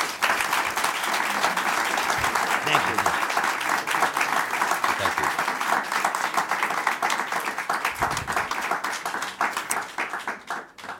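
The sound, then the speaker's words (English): A crowd applauds steadily for about eleven seconds after Rhode Island's Speaker Shekarchi and President Ruggerio are thanked for joining, many hands clapping in a dense, even roar that tapers off slightly at the end. “Now you can applaud.”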